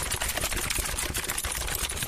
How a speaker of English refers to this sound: the sounds these writers made, clacking away on their laptops, keyboards, and smartphones in unison.